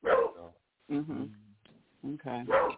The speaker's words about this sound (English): Hold on. Go ahead. Let me quiet my puppy down.